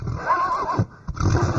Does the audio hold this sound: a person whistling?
no